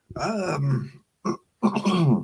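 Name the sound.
coughing fit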